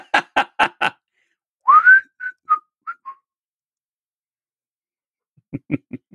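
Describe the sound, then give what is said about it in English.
A clear signal whistle: one rising swoop followed by four short, dropping notes, set between two bursts of quick, evenly spaced knocking at the start and end; it is Padden Fane's secret door knock and magic whistle. “He's got the secret door knock and the magic whistle, and he's got a couple of aides as his backup.”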